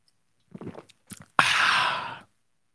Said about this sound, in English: Oh, my God. I think I need a sip of the day. Hold on.